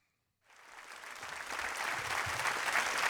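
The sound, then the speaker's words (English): Applause from a live audience on a live album starts abruptly after a brief silence and swells into a steady, dense wash of clapping and cheering that grows louder toward the end. “It's a live album. Thank you. I knew that because our live they're applause. They're cheering for me.”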